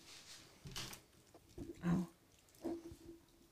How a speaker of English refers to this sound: That's cute though, a dog, a little puppy that's running around like crazy. And what the heck is she playing with? A piece of Christmas garland.